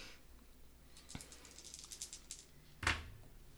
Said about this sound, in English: Oh, I need more dice. Sorry, I'm not prepared today. That's okay. And you can just roll one dice multiple times.